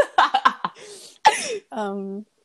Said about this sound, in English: Yeah, sorry, I need a cough, but, like, you were talking, so I was like, oh, hold it.